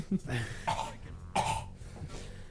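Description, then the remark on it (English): A harsh, hacking cough repeats in several rough bursts over a couple of seconds, fairly loud, with throaty rasping between the fits. “Walter White cough still?”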